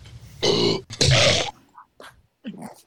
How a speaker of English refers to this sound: What's wrong with your dog? Oh, he's just yakking up the phone.